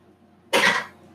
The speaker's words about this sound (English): That was my chair. It's a squeaky chair. I need a new one.